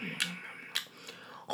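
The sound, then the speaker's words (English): A girl takes several crisp, crunchy bites into chalk, four sharp brittle cracks spaced unevenly over a second and a half, with a soft grinding hiss between them and a louder crunch at the end. “You hear that crunch?”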